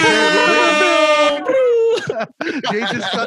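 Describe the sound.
A loud, brassy air horn sound effect sample blasts steadily for over a second, then trails off into a short tone before excited voices chatter over the end.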